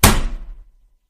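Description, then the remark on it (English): A single heavy slam of a woman's hand onto a table, a sharp, loud thud that rings briefly and fades within about half a second, with no voices. “slammed her hand on the table.”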